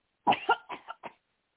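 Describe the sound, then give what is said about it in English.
A quick series of four or five harsh coughs from one person during a deliverance prayer, fairly loud, coming in rapid bursts that weaken toward the end, with no speech. “Cough that thing out.”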